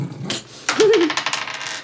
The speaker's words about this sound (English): What is your damage dice, do you know? D10. All right. Roll your d10 twice.